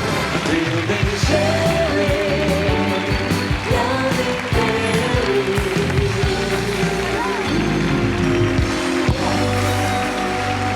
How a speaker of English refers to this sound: A studio audience claps vigorously as a well-dressed and good-looking couple walk down to the stage.